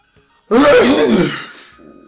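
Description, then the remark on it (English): A person acts out a single loud, theatrical sneeze: a sudden voiced burst that rises and breaks, trailing off into a softer breathy tail. “Bless you.”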